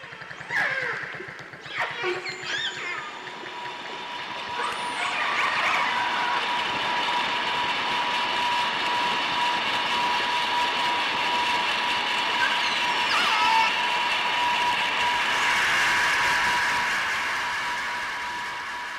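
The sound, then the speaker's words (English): Underwater recording where brief high whistles and clicks are soon buried beneath a loud, steady mechanical drone of a passing boat engine, with tonal hum bands that swell and hold before fading slightly. “Just listen to this audio of how noise from a passing boat totally drowns out dolphin communication.”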